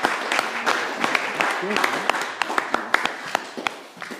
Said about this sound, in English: Mark a round of applause.